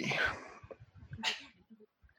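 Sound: a sneeze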